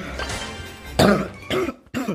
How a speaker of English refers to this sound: I'm sorry, guys, that you have to hear me cough, but.